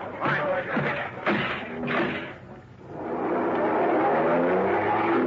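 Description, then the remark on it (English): A few heavy thuds, like car doors slamming, then an engine roars to life and revs hard as a car speeds away in pursuit, loud with a rising, strained whine. “Come on, Lacey, the car. Get after him, you guys. Get moving.”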